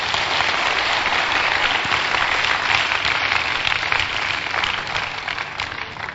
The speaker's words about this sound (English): Clap for Jesus.